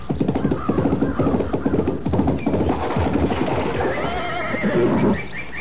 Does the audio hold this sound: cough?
no